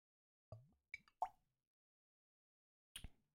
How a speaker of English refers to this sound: I'm going to take a sip because I did open the bottle.